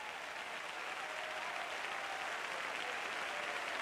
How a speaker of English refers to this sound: Come on, clap your hands, entertain the mighty presence of God that's in this house.